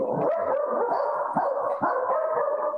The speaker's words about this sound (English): I'm going to mute myself real quick. The dog's got to get a word in, too. Uh-oh. The dog hates baseball.